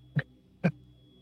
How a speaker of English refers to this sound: I just have to blow my nose.